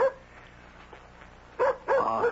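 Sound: dog barking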